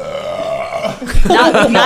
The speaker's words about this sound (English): Dude, that burp, the foreplay. That burp lasted longer than your sex.